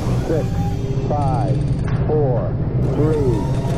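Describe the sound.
A steady, loud, buzzy raspberry is blown with the lips for about four seconds after a high five, imitating a rocket blasting off. Short wavering vocal swoops ride over the rumble.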